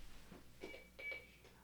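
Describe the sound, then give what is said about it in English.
A daughter's little alarm clock, its alarm set by accident, beeps faintly, two short high-pitched bursts of electronic tone about a third of a second apart, over a low background hum. “Our daughter has this little clock, and she somehow set the alarm on it, and apparently we don't know how to turn it off.”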